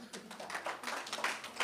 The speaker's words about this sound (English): Oh, let's clap